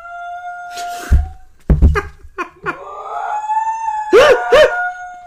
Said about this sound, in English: We're getting sound effects now. There are in fact sirens outside. I know. I heard them too.